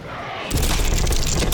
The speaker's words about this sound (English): Ludlov began to move, but Alvarado pulled him back as a colossal barbed tail emerged from the port side of the ship. Tubalba's tail crashed down on top of the deck,